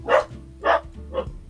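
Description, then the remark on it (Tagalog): Three sharp barks from the speaker's own dogs in a steady rhythm, each a short loud burst, with a low steady hum underneath and no voices. “Oo, ang dami talaga ang mga aso ko po.”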